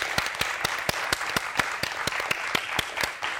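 Applause from an audience: a dense wash of clapping with sharp, evenly spaced claps cutting through at a quick, steady rhythm, holding a fairly constant level throughout with no voices.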